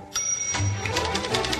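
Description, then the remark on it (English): Fast, vigorous typing on a keyboard by someone finishing a screenplay, a steady rapid patter of sharp key clicks running together, with faint music playing underneath. “Why are you typing vigorously with music playing?”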